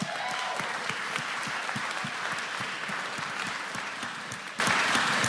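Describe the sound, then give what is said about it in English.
An audience claps steadily, a dense patter of many hands with sharp individual claps standing out, swelling louder for the final half second; no one speaks. “Keep clapping for John Saltzman.”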